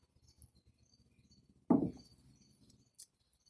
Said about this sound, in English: Romans chapter 8 and verses 23, while I take a sip of water.